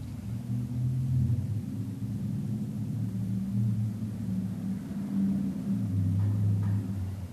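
A loud motorcycle rumbles past in the neighborhood of an urban meditation center. Its deep, throbbing engine note holds steady, then shifts pitch and swells slightly toward the end. No voices are heard.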